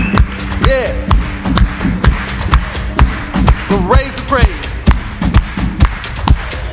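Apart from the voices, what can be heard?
hands clapping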